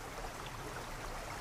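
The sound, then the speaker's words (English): A small stream trickles steadily over slick, black, flat stones as it runs from a stand of trees to a small stone bridge that carries the water beneath a road. It is a soft, continuous babbling wash with no breaks, fairly quiet, and no voices. “At the bottom, held by gentle slopes of earth, the stream runs between a stand of trees in one corner to a small stone bridge at the other that carries the water beneath the road.”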